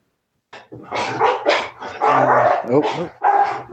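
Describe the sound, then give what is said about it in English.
Several dogs bark loudly in a steady, overlapping flurry, with sharp yips mixed in, starting after a brief silence and continuing without pause to the end. “See, the dogs agree.”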